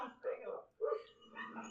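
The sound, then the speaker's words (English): A dog barks in three short, slightly muffled bursts over under two seconds, moderately loud, with a whiny, yelping edge to each bark, heard from a video being played. “Literally, the fucking dog shows up and shit.”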